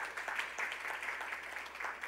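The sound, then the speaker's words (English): A church audience applauds steadily, dense overlapping claps forming a continuous wash of sound, with no speech over it. “So can you give a clap to that?”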